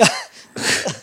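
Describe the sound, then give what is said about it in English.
A loud sneeze: a sharp explosive burst with a brief voiced edge, followed by a couple of breathy, noisy exhalations trailing off within about a second. No talking. “I just saw every virus that just came out your fucking... sneezed all over you.”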